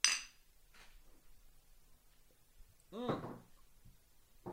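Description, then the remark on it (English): A single bright clink of glasses in a toast with craft beer rings out right at the start, crisp, then fades; a brief voice murmurs a few seconds later. “Well, there we go. Cheers.”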